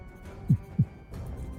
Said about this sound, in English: The heartbeat. There we go.